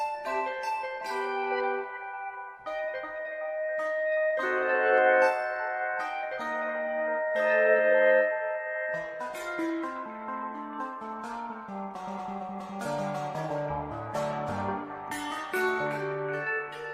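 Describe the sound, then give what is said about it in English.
Sustained, organ-like keyboard chords hold steady and shift every few seconds, with deeper bass notes stepping in during the second half. The music plays alone at a fairly even level, with no voices. “Kind of sounds like an organ.”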